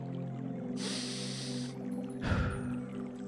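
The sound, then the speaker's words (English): A long, airy inhale is followed by a short, forceful breath out, all over a steady low electrical hum with no talking. “But anyway, let me do some deep breathing.”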